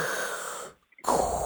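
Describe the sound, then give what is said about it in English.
A person imitates Darth Vader's mechanical respirator breathing: a long, hissing breath, a brief silent pause, then a louder, raspier breath, with no talking. “What does he sound like?”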